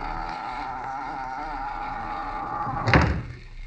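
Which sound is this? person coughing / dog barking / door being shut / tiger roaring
door being shut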